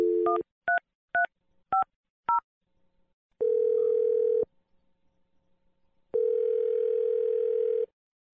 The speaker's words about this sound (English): Here we go. We're about to dial your husband's phone number.